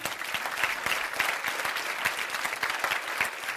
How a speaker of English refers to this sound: Clap your hands.